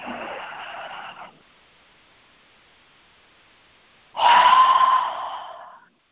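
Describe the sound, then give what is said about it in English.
An airy breath in through the nose during a guided breathing exercise, a few seconds of held silence, then a louder, breathy exhale through the mouth with a slight voiced, sigh-like tone that trails off. “You're going to take a big inhale through your nose, and I want you to hold it for a few seconds, and then exhale with sound through your mouth.”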